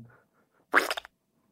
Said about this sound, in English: Oh, excuse me, I did a fart as well.